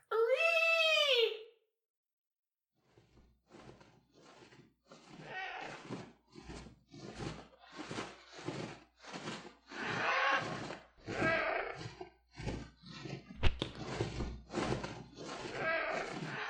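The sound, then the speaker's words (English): A loud, shrill pteranodon cry, calling the pteranodon for a ride home, rises and falls in a single screech lasting over a second. After a short silence, a person starts talking steadily. “Yes, now I must call my Pteranodon for the ride home.”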